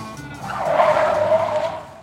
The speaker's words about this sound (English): Detective Gopher and Detective Blue zoom to the farm in the Gopher-mobile.